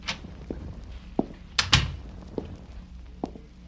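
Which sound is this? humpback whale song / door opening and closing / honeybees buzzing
door opening and closing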